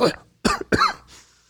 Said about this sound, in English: What was that? That sounded like a cough. A dry cough. Dry cough.